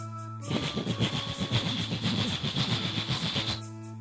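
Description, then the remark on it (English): A voice imitates a train as a warm-up, with a steady run of breathy chugging bursts lasting about three seconds, set over a constant low electrical hum. “A train?”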